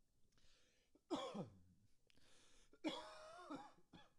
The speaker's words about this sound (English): Still getting over the cough, but yeah, the CDC said 10 days and it's been like 14 since I tested positive.